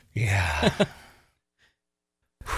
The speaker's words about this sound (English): Going to be some good airway. Just this breathing.